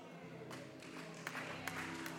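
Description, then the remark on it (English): An audience breaks into clapping after a brief pause, a fairly quiet, steady wash of many hands with a few sharper claps standing out, over a low sustained musical hum. “Everybody can clap right there.”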